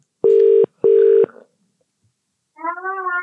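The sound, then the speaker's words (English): Two steady electronic ringback tones on an outgoing phone call to a woman, each about half a second with a short gap, then a pause before a brief harmonic, voice-like sound at the end. “Let me just phone her, see if she answers. Amateur. It's ringing.”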